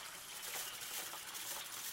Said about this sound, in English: It's like the water's all different colours, but it's just the way it's flowing through the glass. House colours, like the hourglasses.